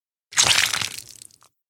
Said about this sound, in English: What are you chewing on? I got these things that are literally like chew toys. For people? For people.